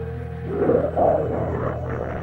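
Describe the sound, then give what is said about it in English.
A low, rumbling growl of an unidentified creature, coming from within, swells twice in quick succession over a steady droning hum, gritty and guttural, then settles back into a sustained low rumble. No voices. “It sounded like a growl coming from within.”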